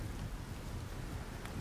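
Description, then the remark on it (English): Steady rain falls in an alleyway in a continuous low wash, with a deep rumble underneath and a faint patter on hard surfaces, no voices present. “And the three of you in the rainy alleyway.”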